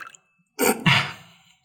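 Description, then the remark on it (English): A brief pour of rosé wine into a glass: a sudden splashy gush lasting about a second, then trailing off quietly. No one speaks. “Ooh, get a little AMSR rosé pour in there.”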